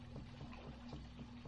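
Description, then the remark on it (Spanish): Soft water sloshing and lapping against a small boat on a river, steady, with a faint low hum running underneath and no voices. “Mientras vas disfrutando en la barca, el viento que te acaricia, el agua que te canta, dejas que tu alma y tu mente se apacigüen y sean mecidas y sean arrulladas por el ritmo de la barca.”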